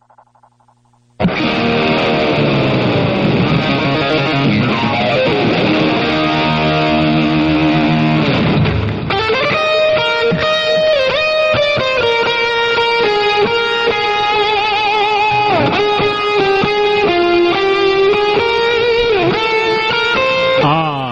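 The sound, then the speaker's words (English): A recording of the alma mater song "Hail Dear Old State" plays loud and steady for about twenty seconds, with full sustained harmonies that shift partway through into brighter, busier melodic lines, slightly distorted, with no talking over it. “The dulcet tones of Hail Dear Old State.”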